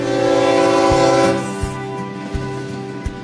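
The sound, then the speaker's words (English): A freight train rumbles past with a loud, sustained horn blast at the start, followed by steady clacks of wheels over rail joints at a regular rhythm, with no voices. “A mega rail hub is under construction near the port. It's expected to double the amount of cargo that leaves there by train.”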